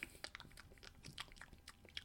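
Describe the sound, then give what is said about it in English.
A voice imitates chewing as shown in a comic panel, with a quick, irregular run of wet, crunchy mouth clicks and smacks, fairly loud, lasting about two seconds with no words. “The iconic panel is just like chewing, just...”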